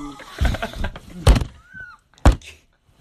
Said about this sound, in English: Also, we can't bang on this table.